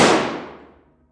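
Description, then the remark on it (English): A single gunshot: one sharp, loud, bright crack that fades out over about a second in a smooth decaying tail, with no voices around it. “And then I heard the shot.”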